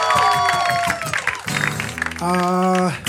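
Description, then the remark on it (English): A round of applause for JBTV with steady, dense clapping, mixed with loud sustained whoops and cheering voices rising and falling over about three seconds. “Real quick, make a round of applause for JBTV, huh?”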